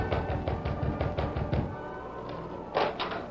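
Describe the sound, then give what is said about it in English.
A young sailor raps a quick, steady series of about eight hollow knocks on the wooden door of the Stevens home, followed by a brief pause and a softer clunk, like the door being handled. “In the meantime, the young sailor rapped on the door of the Stevens home.”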